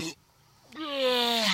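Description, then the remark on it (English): An eerie seal call heard from below through 6.5 feet of ice: after a short burst and a brief silence, a steady, buzzy harmonic tone begins and slowly slides downward in pitch, holding loud and unbroken to the end. “But even through 6.5 feet of ice, we can hear eerie calls telling us that down below is another story.”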